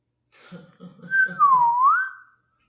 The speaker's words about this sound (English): You know, when … was building the Saturday Night Live band, I think the first instrument he got was a slide whistle. Mm-hmm. Any real band, I mean. Yeah, you got to start somewhere. Yeah, that was John Belushi's go-to.